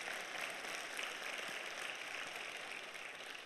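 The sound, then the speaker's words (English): A crowd claps together in a steady, dense wash of applause that holds an even level for a few seconds, with no voices standing out. “You can clap to that.”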